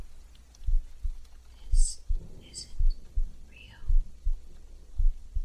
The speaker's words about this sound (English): You can feel your heart beating in your throat.